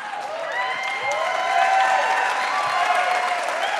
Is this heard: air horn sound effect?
no